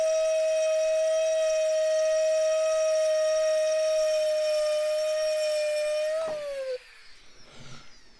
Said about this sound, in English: Time to pull it out, turn it. Yeah, it doesn't feel like I went all the way through there. And I can tell that it's not burning the gourd. It's sawing the gourd.